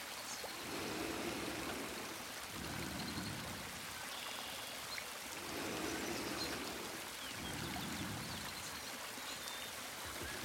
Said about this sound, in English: I lay it down at the base of the thick redwood, just far enough away from the waterfall to not get splashed.